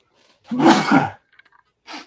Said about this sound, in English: pardon me. Cerveza sneeze.